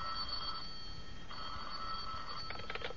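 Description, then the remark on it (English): A telephone rings twice in steady electronic bursts in the law office of attorney John J. Quiet, then starts a rapid trilling ring, clear over a soft background hiss, with no one speaking. “Oh, he's busy on the other phone, but I'll give him the message.”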